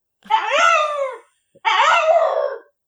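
A dog named Stanley whines and howls in two long, loud cries separated by a short pause, each one wavering and sliding downward in pitch, with no one speaking over them.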